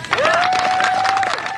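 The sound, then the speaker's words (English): A crowd claps and cheers steadily in a dense, continuous patter as reporters begin to holler out questions, while someone lets out a long, sustained high-pitched whoop of cheering over the applause, holding the note for about a second. “She stands there for a minute, chin up, unsmiling, as people clap and cheer and reporters begin to holler out questions.”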